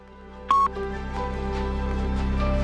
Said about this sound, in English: Now, if you have any comments for me or any questions for me on doing the impossible, please leave them after the beep. And here is the beep.